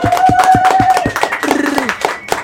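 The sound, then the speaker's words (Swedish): A small group claps their hands in quick, steady rhythm to congratulate a Grammy win, fairly loud, with a brief vocal whoop or sung note rising over the clapping partway through. “Det krävs en applåd.”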